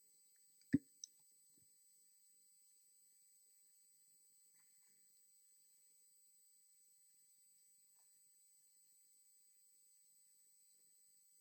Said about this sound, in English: So if you've got your Bible, turn to Revelation 4 while I take a sip of water.